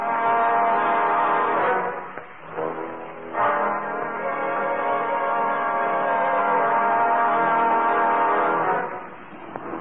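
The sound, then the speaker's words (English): A car horn honks in long, loud, sustained blasts: one held for about two seconds, a brief break, then a much longer continuous blare. No voices accompany it. “And I say it was a regular car with a regular horn.”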